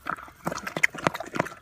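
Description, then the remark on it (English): Wet smacking laps as a bear licks honey from a jar, a quick irregular series of sticky clicks and slurps with no talking. “That is a bear licking a jar of honey.”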